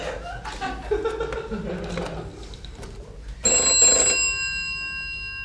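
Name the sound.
telephone ringing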